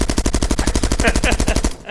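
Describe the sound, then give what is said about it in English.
A loud, sustained burst of machine gun fire, about twenty rapid, evenly spaced shots rattling off for nearly two seconds before cutting out abruptly, with no voices. “Did they carry machine guns?”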